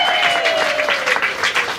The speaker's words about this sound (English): Round of applause.